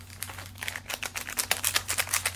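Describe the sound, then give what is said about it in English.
A yellow plastic candy packet crinkles as it is torn open: rapid, irregular crackles that grow busier and louder toward the end over a faint, steady low hum, with no talking. “So add water up to the line and then add yellow packet.”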